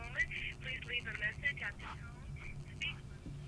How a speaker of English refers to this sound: It's still not ringing here. I saw it light up over there, but nobody picked up. Oh. So the phone rings and you guys... The phone is ringing.